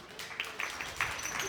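An audience claps in a steady, dense patter, with a few sharper individual claps standing out at irregular moments, the applause fairly soft overall, welcoming an invited friend coming up.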